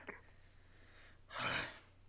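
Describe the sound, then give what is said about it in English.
A voice imitates panicked breathing: a quick sharp gasp, a pause, then one long, heavy, breathy exhale, fairly loud, with no talking. “Starts breathing heavily.”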